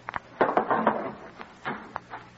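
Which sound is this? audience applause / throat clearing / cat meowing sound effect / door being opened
door being opened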